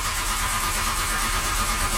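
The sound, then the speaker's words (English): A 4x4 truck engine cranks steadily as someone tries to start it, a continuous churning mechanical drone with a low rumble, fairly loud, with no voices. “trying to start it up right now.”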